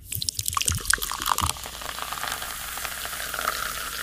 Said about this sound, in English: Oh, how effervescent is that? What is that? Pouring a drink. Absolutely.